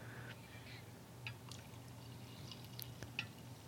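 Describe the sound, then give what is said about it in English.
Coffee pours quietly into a mug, a faint trickle with a few small drips and clinks over a steady low background hum; no one speaks. “Pour it.”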